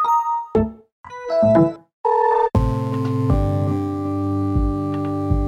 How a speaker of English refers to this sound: In fact, removing the start sound meant that the UI sounds became even more important. UI stands for user interface. UI sounds are the notifications you hear as you use your computer.